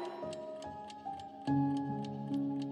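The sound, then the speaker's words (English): An alarm clock ticks steadily, roughly two sharp ticks per second, clear, over a bed of sustained, droning musical tones that shift in pitch and swell louder midway. “Yet, she would still hear that alarm clock go off in the middle of the night.”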